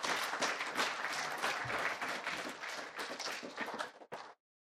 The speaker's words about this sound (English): Why don't you have a seat? Give him a round of applause and say, well done.